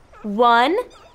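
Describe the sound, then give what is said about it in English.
A sled dog gives one short, rising whimpering yip, fairly loud, lasting about half a second with no other sounds around it. “Visa, your dogs are really fast”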